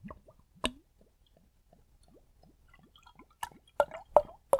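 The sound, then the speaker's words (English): A sharp pop as a maple pastry beer is opened, followed by quiet fizzing and then several loud wet splashes and plops of liquid spilling out. No one speaks. “Oh, it just splashed in my eye.”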